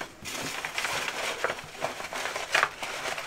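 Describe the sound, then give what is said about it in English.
Papers rustle and crinkle continuously as entries are shuffled in a box, with a few sharper crackling bursts, fairly loud, no voices. “You shuffling?”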